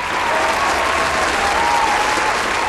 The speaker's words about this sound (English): Well, you and I talked about this beforehand, and first of all, I think all of us should give you a round of applause for this. I think so. Why not?